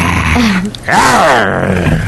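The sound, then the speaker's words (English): A person voices a loud, growling roar, imitating a lion or dragon: a rough groan that dips briefly, then swells into a long, rising and falling bellow. “That's not a dragon noise.”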